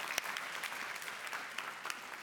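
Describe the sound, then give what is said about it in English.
A crowd at a Sunday Bayshore gathering claps for everyone joining online, a dense wash of many hands with scattered sharper claps standing out, sustained and fairly even in loudness throughout. “And can we make some noise for everybody that's joining us online this morning?”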